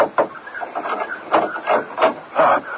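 Repeated knocking on the locked front door of a home, about eight dull, wooden raps in loose uneven clusters, each with a short ringing tail, moderately loud with no voices.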